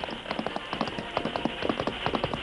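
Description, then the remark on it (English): Galloping hooves of Silver, the Lone Ranger's horse, urged on while racing to catch up with a train, pound in a fast, uneven rhythm of clustered beats, steady and fairly loud over a constant low rumble, with no voices. “He urged the great horse Silver to further effort.”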